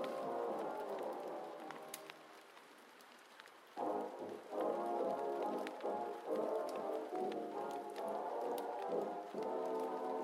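Heavy rain gives a steady, even hiss beneath muffled oldies music playing from another room that swells after a quieter opening stretch. Scattered sharp crackles and pops of a fire break through now and then.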